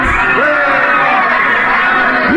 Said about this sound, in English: Look at that crowd around the ship. Looks like we're being welcomed with a celebration, Captain.